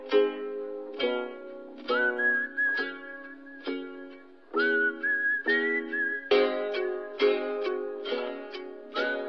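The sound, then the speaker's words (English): Someone whistles a tune in long, steady notes over a rhythmic backing of plucked, strummed music with regular beats. No one speaks, and the whistling sits clearly above the instruments. “…,”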